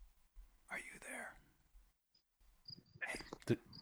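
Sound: crickets chirping outdoors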